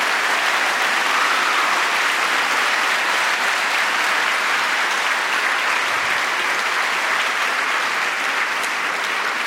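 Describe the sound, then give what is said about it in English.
A large audience at a student prize ceremony applauds the students, their parents, teachers and mentors steadily, a dense wash of clapping that holds at a loud, even level for the full length with no voices standing out. “Let's have one more round of applause for all of our students, their parents, teachers, and mentors.”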